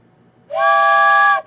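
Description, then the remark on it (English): A single loud train whistle blast, a steady, breathy chord that sounds for about a second and then cuts off, with no voices around it. “Come on, ride the train. Ride the train.”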